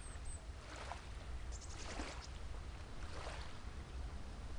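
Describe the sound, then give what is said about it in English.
Calm ocean waves wash in gently with a steady low rumble, soft swells rising and fading every second or so, moderately loud, with no voices. “Let it be now in front of these calm waves so we may remember their love and care.”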